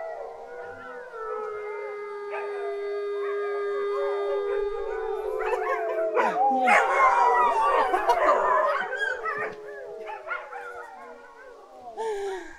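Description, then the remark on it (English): Several dogs, including puppies and house dogs, give an after-dinner howl at evening meal time in a sustained, overlapping chorus, joined by higher-pitched puppy yips and wavering cries that build into a busy, tangled peak before trailing off. “Oh, the puppies are getting into it.”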